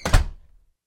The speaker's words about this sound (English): I ran towards the house. It spits the black goo at me, but it missed. I made it into the house and closed the door.